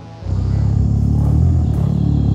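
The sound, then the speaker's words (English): A male gorilla hums in the middle of a meal, a deep, rumbling, steady drone held for a couple of seconds, fairly loud, with no talking. “What it really is a gorilla, a male gorilla humming in the middle of a meal.”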